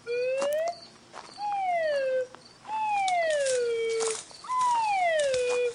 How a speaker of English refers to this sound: Now I got my Clown Squatch call, and we're gonna start working our way through these woods. The local trappers tell me they can be lured in by the plaintive wail of the noble slide whistle.